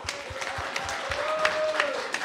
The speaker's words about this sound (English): But still, thank you to the referees. And a really, really big clap for the tech team up there, because without them, we couldn't have done it.